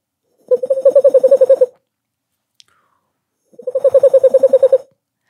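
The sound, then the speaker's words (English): A voice imitates a boreal owl's call: two quick trills of evenly spaced, low-pitched hoots, about a dozen in each, separated by a short silence, with no talking. “There's also a bird sound, the boreal owl.”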